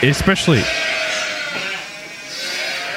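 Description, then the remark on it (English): A person gives a short, wavering, loud bleat in imitation of a sheep in the first half-second, followed by faint background hiss and murmur. “We're the sheep.”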